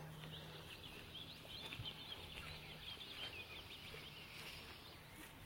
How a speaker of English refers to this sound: Yeah, I can hear distant willow warblers. Might not be able to pick them up. That's a really lovely song.